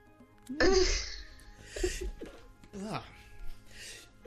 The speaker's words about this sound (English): Oh, we'll edit that out. Damn. Say Walkman and I sneeze.